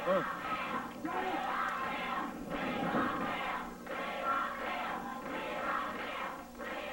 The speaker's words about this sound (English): Crowd are chanting, "We want Tim." I don't know who they're chanting.